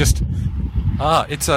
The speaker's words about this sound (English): There's a truck.